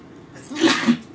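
sneeze

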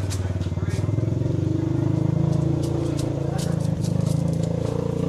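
motorcycle passing by

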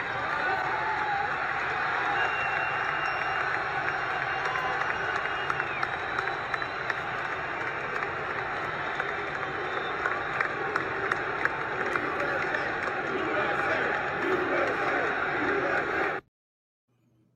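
arena crowd cheering

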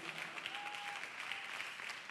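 audience clapping

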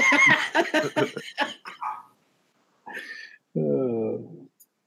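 dogs barking

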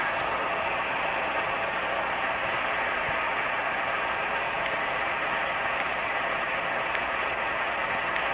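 clock ticking

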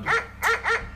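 dog barking and whimpering

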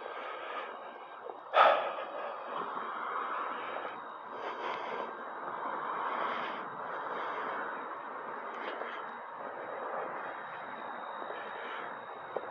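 heavy breathing

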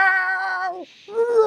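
cat meowing loudly

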